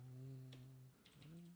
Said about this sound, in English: Type faster. I have the loudest keyboard in the world, too.